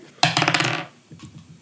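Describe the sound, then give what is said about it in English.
A six-sided die (d6) clatters sharply across a hard tabletop in a quick burst of rapid rattling clicks that settles after about half a second, followed by a couple of softer knocks. “Roll a d6.”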